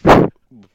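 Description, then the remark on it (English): A single loud, explosive sneeze bursts out, followed a moment later by a brief, quieter voiced sound. “Bless you.”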